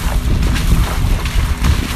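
A 2013 SUV rumbles along Saskatchewan Avenue just west of Route 90, splashing steadily through puddles with a continuous wash of water and road noise, creaking and groaning, fairly loud, with no one speaking.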